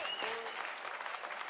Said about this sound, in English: Round of applause for our panel so far.